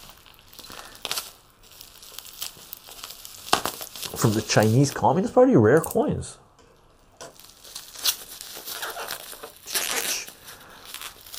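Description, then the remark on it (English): Loud crinkling and tearing of tight plastic packaging for about two seconds as another item is opened, with a person talking before and after. “let's crack open another one and take a look at these things.”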